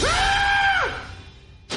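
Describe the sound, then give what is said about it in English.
A single loud, high-pitched scream holds for nearly a second, then drops off sharply, followed by quiet and a brief burst of noise near the end. “Did you just scream like a little girl?”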